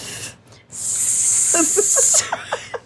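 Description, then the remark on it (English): A voice makes a steady, bright hissing sound imitating bacon sizzling in a pan, held for about a second and a half, with short chuckling bursts breaking in toward the end. “Sound like some bacon sizzling in the pan.”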